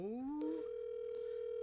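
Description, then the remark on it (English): An outgoing phone call to Tyrone connects: a brief rising electronic sweep, then a steady, mid-pitched ringing tone that holds unbroken to the end, with no voices. “All right, we're calling Tyrone. We're calling Tyrone. If he don't answer, I'm going to be upset.”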